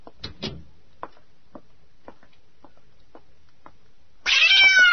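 A few faint, scattered taps and clicks, then Susie the cat lets out one loud, drawn-out meow at the very end.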